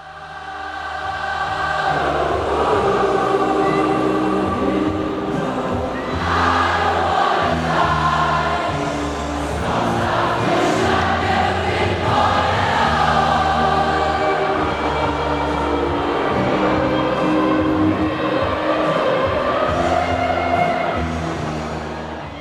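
A huge stadium crowd sings together in unison, a loud, continuous wall of voices whose melody rises and falls in long swelling phrases, with no single voice standing out.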